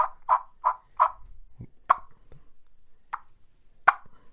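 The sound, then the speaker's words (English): A person plays soft tree yelps and clucks on a turkey call right at the microphone, quietly, imitating turkeys waking up: a quick run of four short, even notes, then a few single clucks spaced farther apart, with no talking. “so I'll start off with some tree yelps and some clucks.”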